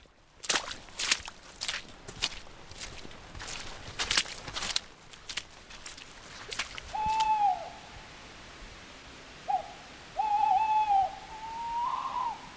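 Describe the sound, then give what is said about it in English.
At least two tawny owls calling back and forth on a slope across a gill, several wavering hoots and sharp calls, after a run of crunching footsteps at the start. “Tawny owl, there's at least two of them, you can hear them calling on the slope the other side of the gill from us.”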